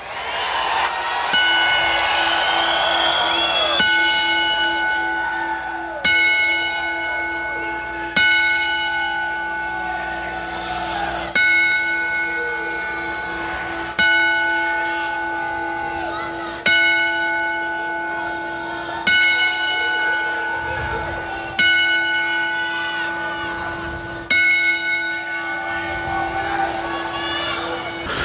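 Church bells ring a memorial bell salute in a slow, steady toll, roughly a dozen loud strikes spaced a few seconds apart, each one humming on and overlapping the next, with no talking.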